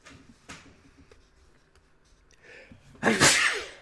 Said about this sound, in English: My goodness, I don't know what's... I've been sneezing quite a bit lately.